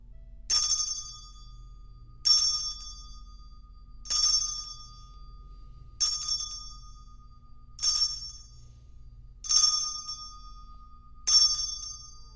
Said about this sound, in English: you're up with the chime.